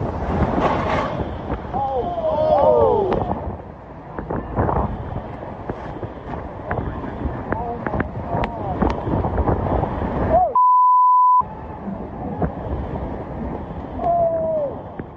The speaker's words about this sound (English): The dramatic footage captured Cantore stumbling through heavy rains and 100-mile-an-hour winds.